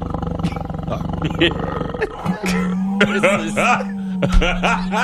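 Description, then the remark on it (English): A voice imitates a tiger's roar: rough, growling bursts followed by a long droning tone with rising and falling yowls layered over it, loud and continuous for several seconds. “That tiger's sounds frisky.”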